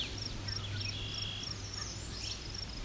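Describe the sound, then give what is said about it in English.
An American redstart sings a series of thin, high-pitched phrases with a downward inflection at the end, fairly faint, repeating across a few seconds over a steady low background hum. “An American redstart singing.”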